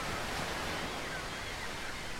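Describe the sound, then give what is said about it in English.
A steady, dense roar of the Mississippi River pouring into the Gulf, a broad continuous wash with no breaks or distinct splashes, and no voices. “At once, a trillion gallons of water roared into the Gulf.”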